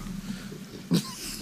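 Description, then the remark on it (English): A drooling dog slobbers and licks at a person's face: a low wet snuffling texture with one sudden loud slurp partway through, no voices present. “For those of you at home, my dog just comes at his wet face and looks slap. Yep. He's been drooling on me all day.”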